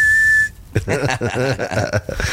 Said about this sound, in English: put a beep sound in.